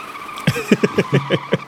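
A car accelerates hard with tires screeching, the squeal coming in a quick, rhythmic series of loud bursts over a rising engine note.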